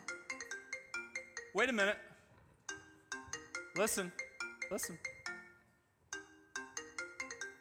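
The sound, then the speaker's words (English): A melodic phone ringtone plays in a rapid, repeating pattern of bright chiming notes, while a man briefly speaks over it. “Same ringtone.”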